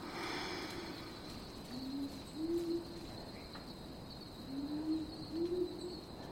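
A powerful owl gives two pairs of deep, soft hoots, each pair a low double note spaced a few seconds apart, over a steady hiss of insects and faint bush ambience.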